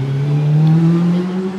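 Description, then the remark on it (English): A motorcycle passes by, its engine a loud, steady buzzing drone that swells slightly in pitch and volume before easing off, with no voices. “How is the trajectory of that motorcycle shaping my sentence?”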